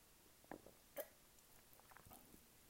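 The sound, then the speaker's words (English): A couple of short, wet slurps from someone taking a drink, the second one sharper. They're fairly faint, followed by a few soft mouth sounds and no talking. “A little slurp there. I have to drink.”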